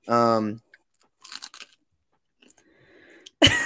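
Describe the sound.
Loud crunchy chewing of food: a short voiced sound, then a cluster of crisp crunches, quieter mouth noises, and a sudden loud crunch at the end.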